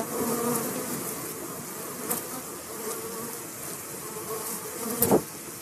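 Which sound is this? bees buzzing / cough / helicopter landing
bees buzzing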